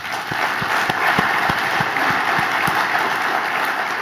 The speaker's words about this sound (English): Please help me thank all of our sponsors with a round of applause.